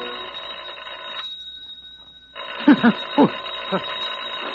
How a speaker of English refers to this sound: It's not the door, it's the phone. Oh, the phone. Yes. Who the devil can that be?